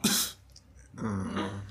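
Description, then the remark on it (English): A voice imitates a character sneezing in someone's face: a sharp, breathy burst followed by a drawn-out voiced tail, loud and alone with no other talk. “He sneezes in your face. Achoo.”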